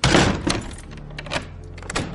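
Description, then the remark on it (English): A door shuts with a solid thunk, followed by a few sharp clicks and clunks as its lock is turned and bolted and the door is double locked, with no voices. “It was not Scrooge's habit to double lock the doors, but he did so anyway.”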